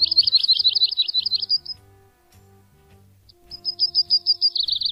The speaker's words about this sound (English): Here's a typical yellow-rumped warbler song.